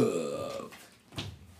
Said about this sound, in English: That was me burping. Everyone appreciates that.